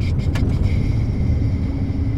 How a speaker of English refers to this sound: Jeff Barron drives over a copper-colored hill in the Powder River Basin near Sheridan